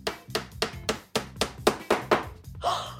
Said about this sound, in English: The entire can of garbage is the size of a brick, and it's hard as a rock. Woo! Let's drive a nail through it and see what happens. Hammer. Hammer. Nail. Nail.